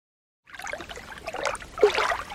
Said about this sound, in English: Hey, Smarty Pants, hope you don't mind if I splash around in this slow-moving river as I record this episode of Who Smarted. Ah, the water here in Florida is so warm.